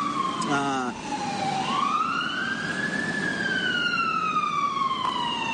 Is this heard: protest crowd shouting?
no